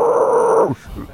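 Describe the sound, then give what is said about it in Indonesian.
A person produces a low, rough vocal growl, a vocal technique being taught, lasting under a second, fairly loud, then it cuts off, followed by faint breathy sounds. “Tu growl. Bila kau bunyi bulat tu growl tau.”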